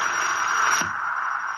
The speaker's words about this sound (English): Even the static's getting weaker now.